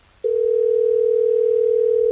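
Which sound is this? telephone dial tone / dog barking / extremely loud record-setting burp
telephone dial tone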